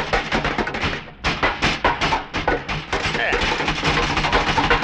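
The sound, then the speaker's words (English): Loud, rapid rattling of a door mixed with repeated heavy banging of a shoe on a metal bulkhead, a continuous clattering din for several seconds. “Now, when I start rattling the door, you start banging away at the bulkhead.”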